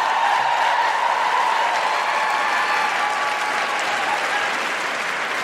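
Steady, loud applause from a large audience, dense clapping filling the whole stretch with some cheering mixed in, fading only slightly toward the end, cheering a woman who left her infant daughter in her father's care to come that night.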